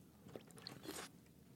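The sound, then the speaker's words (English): A short, quiet sip of water: soft wet slurping and mouth sounds lasting about a second, with no talking. “Getting some water. Got to stay hydrated.”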